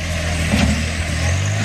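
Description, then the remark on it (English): Tractor engines rumble steadily as tractors drive to push down a Confederate monument, a heavy, low diesel drone with a constant hum beneath broad mechanical noise, loud and unbroken throughout, with no voices. “So now here come the tractors. Drive it down.”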